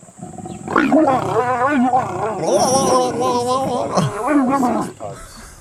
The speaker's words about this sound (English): Is it like a lion? You're close. It was a cheetah.